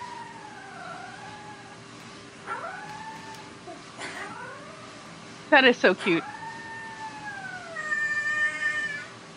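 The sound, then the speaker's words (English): A Siberian husky puppy howls in several drawn-out, wavering wails that rise and fall, broken midway by a few sharp, harsh yelps, with brief human speech. “No, a wolf, because it's a Siberian husky. So it's howling.”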